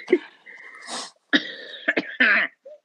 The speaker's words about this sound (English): Excuse me. I'm still getting over a cough / cold / I don't know what the heck is going on with my body.